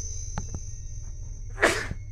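A single sharp sneeze bursts out near the end, fairly loud, over a steady low hum with a couple of faint clicks earlier.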